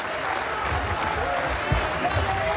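A large arena crowd at a boxing match roars steadily with cheering and clapping during the ninth round, a dense, continuous wash of noise with a few brief swells, heard from within the audience.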